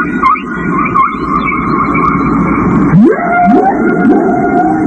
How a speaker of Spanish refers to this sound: No tengo la menor idea de qué se tendrán que decir dos ballenas que se encuentran a 15.000 kilómetros de distancia. Tal vez sea una canción de amor lanzada a la inmensidad de las profundidades.